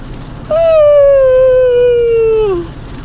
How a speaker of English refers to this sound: And that was a yawn.